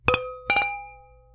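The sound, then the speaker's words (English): Two quick clinks of wine glasses holding a red blend touching in a toast during a wine tasting, a few tenths of a second apart, each leaving a bright ringing tone that fades slowly. Clear, with no talking. “I mean, we got a cheers. We do. It's the law. Cheers. Cheers.”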